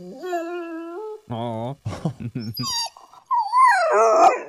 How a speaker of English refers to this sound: because they're saying that the research shows that most people view the sound of a whimpering dog to be just as sad and just as emotional as a crying baby.